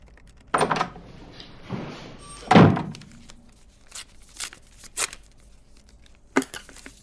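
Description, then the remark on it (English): A door is pushed shut with a heavy, low thud, after an earlier softer knock, followed by a few faint clicks and rattles. “Shut the door on your way out.”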